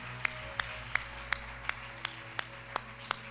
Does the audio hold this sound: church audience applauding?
yes